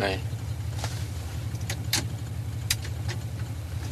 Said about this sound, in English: I left the engine running a minute ago.